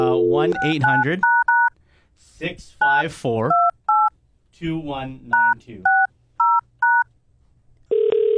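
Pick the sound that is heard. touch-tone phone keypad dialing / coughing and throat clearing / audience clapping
touch-tone phone keypad dialing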